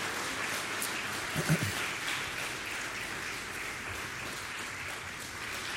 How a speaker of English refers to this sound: Let's clap our hands one more time for Jesus, shall we?